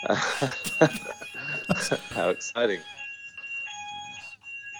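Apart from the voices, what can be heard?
alarm going off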